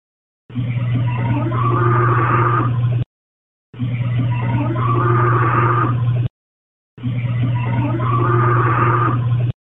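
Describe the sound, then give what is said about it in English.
A low, rumbling growl, taken from a phone video recording and played with noise reduction, plays three times in identical bursts of about two and a half seconds each, separated by silence, with a steady low drone and a slightly filtered, processed tone. “And here is the second growl with noise reduction.”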